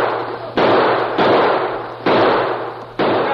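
Several loud gunshots ring out one after another at uneven intervals, fired during a jailbreak at escaping men riding off on horses, each a sharp crack followed by a long echoing decay, with no voices in between.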